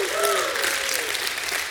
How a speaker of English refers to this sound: Has God ever been good to anyone in this house? Has God provided for all of your needs? You ought to give God a hand clap and a shout of praise.